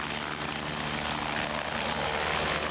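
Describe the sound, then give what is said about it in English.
An air ambulance helicopter's engine and rotor roar steadily and loudly throughout, a dense whooshing drone over low throbbing tones, with no speech. “What the helicopter brings to the air ambulance role is speed.”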